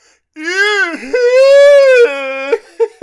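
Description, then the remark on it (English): A person vocally imitates the scream of a skeleton character in a Scrappy cartoon, a scream not of fear: a loud, high, warbling wail with rising and falling pitch, broken into a few drawn-out segments over about three seconds, with no other talk. “But the scream that he does is not a scream of fear.”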